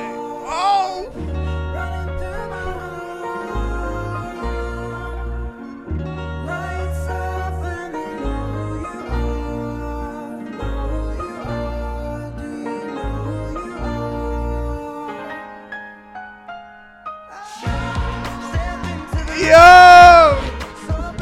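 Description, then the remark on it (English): A song opens with acoustic guitar playing a steady, rhythmic pattern over low bass notes, then a wavering sung voice rises loudly over the music near the end. “that intro is like pretty crazy how like the acoustic kind of fades in”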